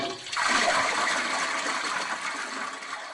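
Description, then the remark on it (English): A toilet in an apartment bathroom flushes pink water with a sudden rush that swells after a brief pause, then churns steadily and slowly tapers as the bowl drains, with no talking. “I've never seen so much pink water before. It's like I gave Kirby a bath in my toilet.”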